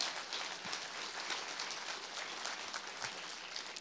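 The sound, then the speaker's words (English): An audience gives God a hand clap, clapping steadily for several seconds, a dense, even wash of many hands with no voices rising above it, holding a fairly constant level throughout. “Come on, someone give God a hand clap.”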